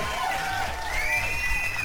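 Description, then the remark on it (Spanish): A crowd cheers and whoops with high, sliding shouts over a steady wash of noise, loud and sustained throughout, with possible clapping blended underneath; the applause is for all the people taking part that night. “Un pinche abrazote y un aplauso para toda la gente que me está acompañando esta noche, desinteresadamente.”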